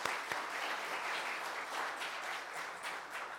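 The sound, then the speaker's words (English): A crowd applauds the students who led worship that Sunday morning, a dense wash of many hands clapping at an even, sustained level for a few seconds with no voices standing out. “Can we clap for them again?”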